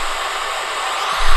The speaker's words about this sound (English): Oh, it's a bit windy around here, guys. That's the sea.